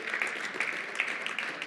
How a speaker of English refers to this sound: Come on, would y'all give God a hand clap of praise? Thank you, Jesus. Thank you, Lord.